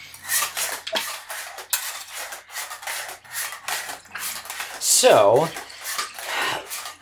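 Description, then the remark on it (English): A film developing tank being agitated for the first minute just after developer is added, with a steady series of sloshing, clattering bursts and a brief rattling swirl midway. A voice speaks a single word over it. “And now agitate for the first minute.”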